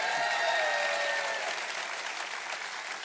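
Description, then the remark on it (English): A church audience claps steadily in the morning for Miss Udella, in a dense, even wash of applause that holds at a fairly strong level for a few seconds, easing slightly toward the end, with no voices standing out. “Well, if you really want something to clap about, Miss Udella is also here this morning.”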